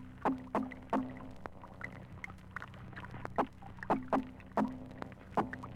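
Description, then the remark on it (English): Spotfish sounds in a tank: a series of sharp, knocking pops in irregular pairs and singles, each with a brief low hum, over a steady low background drone. “And these are spotfish in a tank.”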